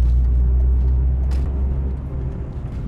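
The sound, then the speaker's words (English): Steady low engine rumble and road noise from inside a car in Monday morning traffic, with a brief airy hiss midway, likely a passing vehicle or brake, under a constant drone. “Oh, Monday morning traffic.”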